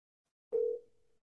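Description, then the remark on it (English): A single steady electronic ring tone, like the ringback heard while an outgoing phone call waits to connect, sounding once for under a second at moderate volume and then fading out, with no voices. “Long ass ring. This bitch won't stop ringing.”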